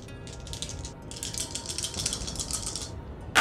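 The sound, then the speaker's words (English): Dice are rolled for ghouls: they rattle and clatter for about three seconds, a dense run of sharp, bright clicks with a brief pause early on, with no voices. “And I'll also roll for those 3 ghouls who will have surely heard their companions growl.”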